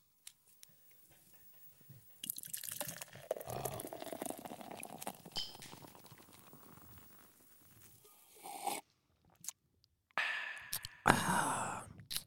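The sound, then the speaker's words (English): A voice imitates beer being poured using hissy, gurgling mouth sounds: a long sloshing pour, a short pause, then a burst of fizzy, foaming noise. “it's time to pour us some beers.”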